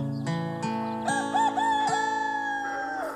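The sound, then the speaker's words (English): A rooster crows in a long, wavering call, with several sharp clucks from chickens breaking in, fairly loud, with no one talking. “Oh, settle down, you two. Ricky Chicken Nixon here. Chickens are the backbone of this country.”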